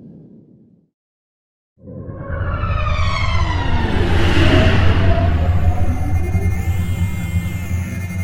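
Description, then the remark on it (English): After a brief low murmur and a short silence, a landing shuttle's engine roars to life with a deep throbbing rumble and rising, whining tones that swell and sustain as it powers up and lifts off. “Power up the landing shuttle.”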